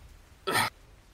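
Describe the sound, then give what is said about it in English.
A single short, rough throat-clearing cough, loud, about a quarter-second burst standing alone against quiet background, voiced as if imitating a character hacking. “He just coughs more and goes”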